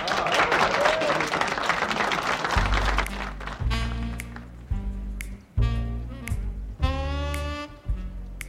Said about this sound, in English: Let's have a nice warm round of applause for Miss Lola Kristal.